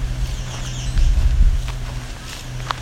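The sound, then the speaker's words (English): A few sharp, isolated tick calls of a myrtle warbler ring out, spaced irregularly over a steady low rumble of outdoor background noise. No one speaks. “Okay, that tick is familiar to me”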